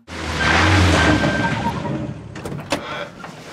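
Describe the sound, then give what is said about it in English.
People getting out of a car at a diner: a car door opens with a long, thin, whiny squeak over a broad rumble, followed by a couple of sharp thuds as doors slam shut. “when they get out of the car and they're slamming the doors, they're opening and slamming the doors at the diner, and it just has this really crappy, funny squeak to it.”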